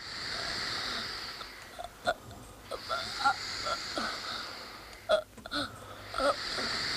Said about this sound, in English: And it's not a sudden death either. The boy kind of gasps for air over a long period of time before dying.